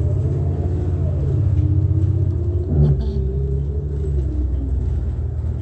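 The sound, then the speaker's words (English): Steady low engine rumble of road traffic, an AT&T utility vehicle idling or rolling past in front of a bus with a brief swell in loudness midway, continuous for several seconds with no talking. “FedEx crossing path, monitoring with AT&T, who's using that utility vehicle as light activity in front of the bus.”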